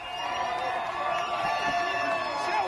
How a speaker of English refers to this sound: Wonderful, isn't it? People shouting, laughing, dancing, whistling, screaming. They're just jumping around, happy, enjoying themselves. Cans of beer in their hands. Every street packed. I think that's London, from what I believe.